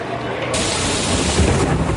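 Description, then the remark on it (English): Loud thunder rolls through a storm on Independence Day, breaking into a sudden crack and then a sustained, deep rumble over a steady hiss of rain, with no voices. “On this Independence Day, the booms in the sky aren't coming from fireworks.”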